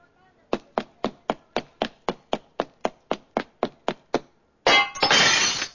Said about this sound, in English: Killer, you run into the store, grab the jewelry, smash the glass door, and dash out.